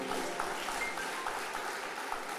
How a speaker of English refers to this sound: Oh, if you are clapping, let me allow you to clap.